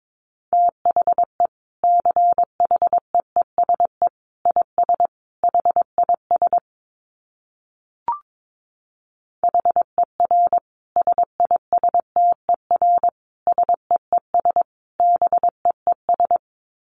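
Morse code sent at about 22 words per minute: a steady mid-pitched beep keyed into quick dots and dashes, broken by one gap of a couple of seconds with a brief click.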